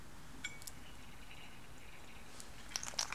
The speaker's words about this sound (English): Now, let me take a sip of water on this because, y'all.